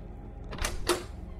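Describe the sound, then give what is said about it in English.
A door opens: a quick latch click followed by a sharper clunk a moment later, with a faint squeak. Low background rumble, no talking. “Open the door so we can talk.”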